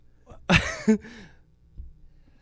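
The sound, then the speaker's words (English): A single sharp sneeze: a sudden breathy burst followed by a brief voiced tail, then quiet with only faint background noise. “Bless you.”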